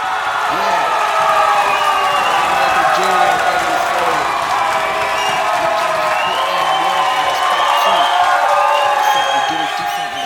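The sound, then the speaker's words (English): A crowd applauds and cheers loudly and steadily for about ten seconds, with dense clapping, scattered whoops and shouting voices mixed in throughout. “Say, man, I say a big round of applause for me for that.”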